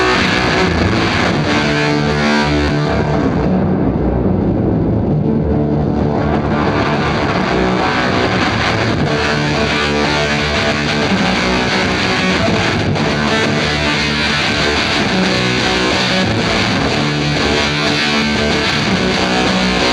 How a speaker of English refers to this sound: This example is going to have moving power chord, sort of a punk vibe to it. Still with quite a bit of reverb on it, but I'm going to open and close the filter again just so you can hear how it's working in a different context.